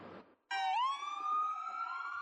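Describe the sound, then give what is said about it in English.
A loud emergency siren bursts in after a brief rush of street noise on 7th Street near Market, its harmonic tone sliding upward and then holding a steady, piercing wail. “We set up our camera on 7th Street near Market, and it wasn't long before we heard sirens.”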